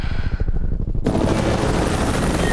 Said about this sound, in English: You hear that? Hey, relax. Ooh. There are choppers flying here all the time, you know that.